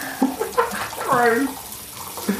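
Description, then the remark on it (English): Water runs from a kitchen tap into a container, a steady splashing stream whose pitch rises as the vessel fills, with faint voices in the background. “Oh, I've not got quite enough water.”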